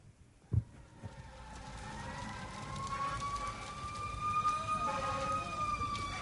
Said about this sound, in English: You can hear the fire trucks arriving.